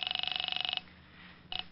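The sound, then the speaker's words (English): A telephone ring heard over the line as an operator connects a call to the 5th Precinct Police Station: a rapid, buzzy warbling burst for most of a second, a pause, then the start of a second ring cut short. Moderately loud, no voices. “I'm ringing.”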